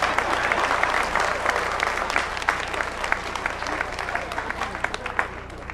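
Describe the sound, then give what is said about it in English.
A crowd claps steadily after being told to clap, dense overlapping hand claps forming a continuous burst of applause that stays loud throughout, with a faint low hum underneath. “Some old witch don't want you to clap. Clap!”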